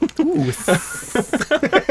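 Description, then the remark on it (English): A person imitates a snake with a sustained, sharp hiss lasting about a second, fairly loud, while other voices keep chattering and making sounds underneath and around it. “Like a slippery little snake.”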